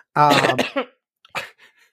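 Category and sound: human body sound, cough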